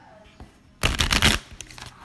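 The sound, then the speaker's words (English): A deck of playing cards is riffle-shuffled while the cards are bent, a dense burst of rapid flapping and clicking lasting about half a second, followed by a few softer card taps. “They're starting to shuffle a little better. I'm bending them.”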